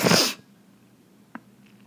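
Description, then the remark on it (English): A single sharp, loud sneeze bursts out at the start, followed by quiet breathing and a brief faint sniff or click about a second later, from allergies during allergy season. “Sorry if my sniffling has bothered you. It definitely is allergy season.”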